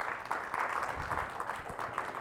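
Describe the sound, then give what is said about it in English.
A crowd gives God a praise clap in a dense, sustained burst of applause, many hands blending into a steady, rapid patter that stays at an even loudness throughout. “Come on, give God a praise clap if you are.”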